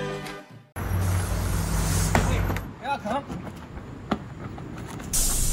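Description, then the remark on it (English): A packed bus's engine rumbles low, joined by loud hissing bursts of air like brakes releasing, with brief muffled voices and clatter in between. “This bus is packed.”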